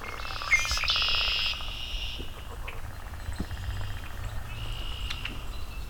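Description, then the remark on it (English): A male red-winged blackbird sings a single buzzy, rasping trill near the start, followed by scattered softer chirps and calls over steady outdoor background noise. “Some male singing.”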